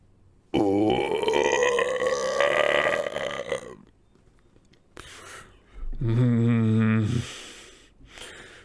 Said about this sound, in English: … let out a huge belch